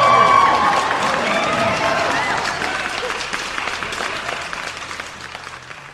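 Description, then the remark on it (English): Loud crowd applause with cheering and whoops, dense clapping that starts strong and gradually tapers off over six seconds, with high-pitched shouts standing out early. “All them crazy cats are going wild for you.”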